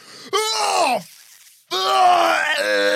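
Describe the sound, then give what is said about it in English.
Two loud, drawn-out anguished cries from a single voice, acted as screams of pain after a stabbing; the first falls in pitch, and after a short gap the second rises and wavers. “Let's all give our best scream as if we've just been stabbed.”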